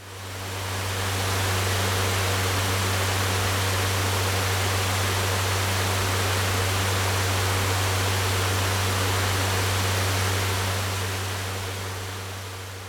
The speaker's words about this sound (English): What did you guess for that sound? It was a fan. Some people like the sound of a fan while they're sleeping. Did that sound make you feel sleepy?